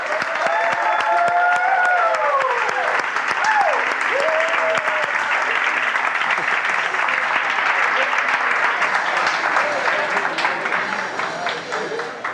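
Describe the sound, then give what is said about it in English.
A large audience stands up and bursts into loud, sustained rock-star applause to welcome someone on stage, with music playing; the applause stays dense and steady throughout, with a few rising whoops and cheers in the first seconds before it slowly thins at the end. “we'll all stand up and give the warmest rock star applause for Elisenda”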